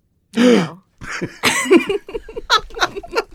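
A sharp, dramatic gasp with a brief voiced, high-pitched catch, followed by a series of breathy, uneven bursts that sound like stifled laughter or flustered breaths.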